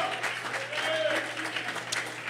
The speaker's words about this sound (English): If you believe that, I want you to clap your hands to the Lord and give the Lord some praise here tonight.